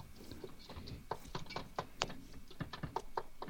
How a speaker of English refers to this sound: All right, I'm just kind of chopping and feeling around here. And I'm going to start kind of scooping and just letting it kind of turn over.